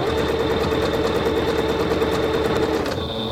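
A sewing machine runs steadily, stitching a brief decorative line along the top to secure the piece, its needle clattering in a fast, even rhythm with a mechanical hum, then the stitching cuts off just before the end.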